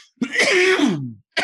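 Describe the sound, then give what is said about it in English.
A harsh, raspy cough from someone who just took a bong hit drags on for about a second, followed by the start of another, loud with no talking. “Pardon the coughing.”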